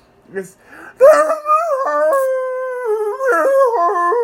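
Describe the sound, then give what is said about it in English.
A person howls, holding a long, loud, wavering tone that steps up and down in pitch for about three seconds after a few quiet vocal sounds, like an imitation of a dog's howl. “You know, I like howling.”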